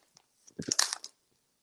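A quick burst of crunching on baked shrimp chips, a few sharp bites in rapid succession lasting about half a second, with no talking.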